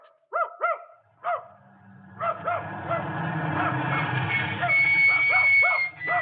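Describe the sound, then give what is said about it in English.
A dog at a farm barks in loud, sharp bursts, first a few separate yelps, then a rapid run of barks over a busy, rumbling background commotion. “Well, now, if you'll call off your dog, ma'am”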